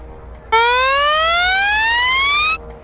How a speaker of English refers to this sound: Please walk slowly and steadily through the archway single file. If you hear a beep as you pass through, please step to the right immediately after the archway.